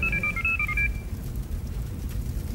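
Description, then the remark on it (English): A brief electronic phone ring, a quick melody of alternating high beeping tones lasting under a second, then fading into a low, steady rumble with no one speaking. “I'll give him a call.”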